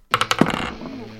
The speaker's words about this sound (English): We're going to roll for initiative. Yeah, everybody get them dice out to do the clanker clank.